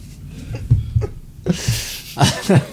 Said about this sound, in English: Well, dude, I think I got COVID. So I'm saying that because I'm coughing.